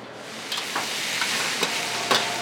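Steady crackling sizzle of food frying in a pan as the cook prepares dishes at a Lao takeout food business, with a few sharper scraping or stirring clicks spaced through the hiss. No one speaks.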